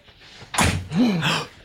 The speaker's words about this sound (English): Oh, God, someone's at the door.